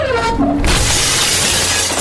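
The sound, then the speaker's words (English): A window is wrenched open with such force that its glass shatters in a sudden, loud crash, followed by a bright, sustained spray of breaking shards scattering across the floor. No voices are heard. “The window was wrenched open with such force that the glass shattered.”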